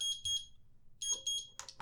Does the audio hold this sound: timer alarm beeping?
yes